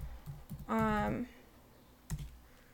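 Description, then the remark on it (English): Soft, quick computer keyboard taps from someone typing a Google search clatter in a short irregular burst, briefly interrupted by a hummed voice sound, followed by one more isolated key click a moment later. “I'm sorry if you can hear me typing.”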